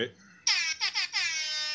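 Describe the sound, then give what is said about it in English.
A voice imitates an air horn: a long blaring blast, two quick short bursts, then a sustained final blast, loud, following a brief quiet lead-in. “Airhorn.”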